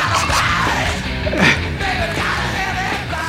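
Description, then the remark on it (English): A raw, strained male yell tears over a loud, distorted punk band, the voice rising and cracking in harsh bursts above driving guitars and drums. “Yeah, his yells are just, it always sounds like someone's lighting his feet on fire.”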